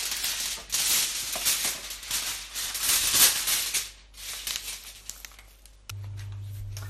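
Aluminium foil is torn and crumpled in loud, crackly bursts for a few seconds, fading to scattered soft crinkles, before a steady low hum starts near the end. No one speaks.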